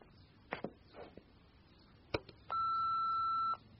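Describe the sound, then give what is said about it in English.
A few sharp clicks and knocks, like a handset being handled, followed by a single steady electronic telephone beep lasting about a second, loud and close, with no talking. “The phone.”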